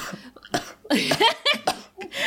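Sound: cough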